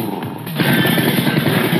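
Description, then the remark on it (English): A Moskvich car engine catches after the key is turned in the ignition and runs with a loud, rough, rattling idle, its low throbbing pulses steady under a hiss of mechanical noise, with no voices. “Put the key in the ignition and listen to that baby purr.”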